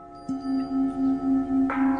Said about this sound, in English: Participants ring the large bell at a local church.